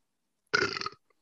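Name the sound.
burp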